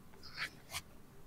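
Two quick, quiet scratching strokes, like a pen or pencil moving across paper, against a faint background hum with no talking.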